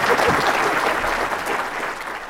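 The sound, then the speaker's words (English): An audience claps steadily, a dense wash of many hands at a fairly loud, even level that fades slightly toward the end, with no voices standing out. “Well, let's get some applause for this guy.”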